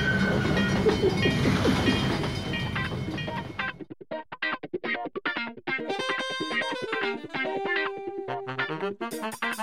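A loud, dense rumble of a train clattering along tracks fills the first few seconds, then abruptly gives way to choppy, rhythmic bursts of distorted tones with no voices.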